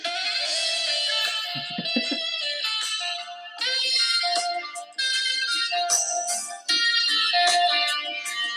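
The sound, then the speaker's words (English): A short, sleazy-sounding music jingle played from a soundboard, loud, with sustained bright melodic tones shifting in phrases over about eight seconds and no voices over it. “the nice, sleazy, dirty music”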